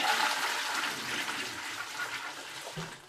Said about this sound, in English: And then the first thing that I noticed was the toilet door slammed shut and the toilet flushed.